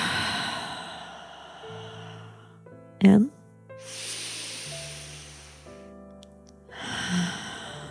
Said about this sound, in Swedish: Så vi gör 3 andningscykler. Där vi andas in genom näsan. Och vi andas ut genom munnen.